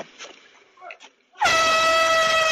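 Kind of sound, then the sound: signal or alarm, air horn blast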